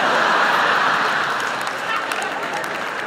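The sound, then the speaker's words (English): A stand-up comedy audience applauds steadily, a dense wash of many hands clapping, loud at first and easing slightly while it continues to the end. “You don't have to applaud.”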